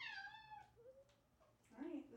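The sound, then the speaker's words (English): A cat wanting to be let in meows loudly, a long drawn-out cry that slides downward, followed after a brief pause by a second, shorter complaining meow. “Maybe we should let her in. She's just going to come in here and bitch louder at us, like in our face.”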